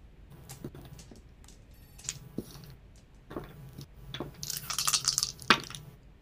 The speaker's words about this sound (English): go ahead and roll me those 3d6 again, if you will, please. Your damage dice.